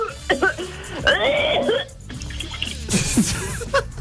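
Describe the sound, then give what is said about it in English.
A person fakes being sick, retching and spluttering with a cup of water, gagging wetly with splashing water in bursts, fairly loud, with gurgling and sputtering noises and a brief pause before more wet coughing splutters. “So this is the process of you trying to make it look like you're being sick, yeah?”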